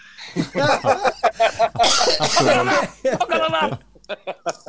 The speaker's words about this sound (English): No, it's just a bad cough.